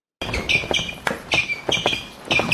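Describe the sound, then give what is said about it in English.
Harsh, high-pitched squeaking from basketball practice repeats in quick, uneven bursts, loud, with dull thumps mixed in between the squeals. No one speaks. “That squeaking, play it real short again.”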